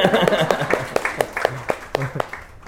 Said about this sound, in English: So if you want to clap, clap properly.